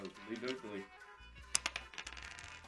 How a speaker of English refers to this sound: Need to roll the dice. We set your handicap at 18. Whatever you roll, we'll take off 18.